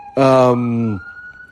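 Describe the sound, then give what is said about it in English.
A loud, blaring siren tone outside a window bursts in for under a second, flat and harsh, then fades into a thin, steady high whine that lingers in the background. “Well, sorry, there's like a fiesta that just broke out outside my window and sirens blaring.”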